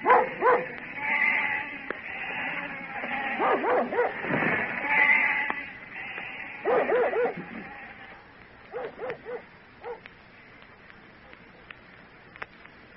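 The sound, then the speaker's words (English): A flock of sheep bleats in overlapping, wavering cries, with a dog barking in short bursts among them; the noise fades toward the end, leaving a few scattered barks. “That's the last we'll see of the sheep till summer's over.”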